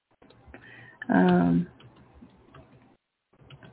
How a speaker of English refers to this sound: Right now I'm typing to him.